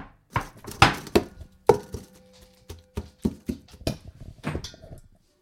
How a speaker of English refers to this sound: I've seen some recipes that say that you should put it in a blender. I'm just mixing it by hand in this big bowl.